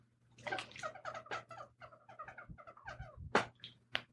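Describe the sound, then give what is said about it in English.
A broken water bottle making a rapid run of squeaky, gurgling chirps, moderately loud, followed by a couple of sharper sloshing bursts near the end; no one speaks. “If you heard that, that's my broken-ass water bottle.”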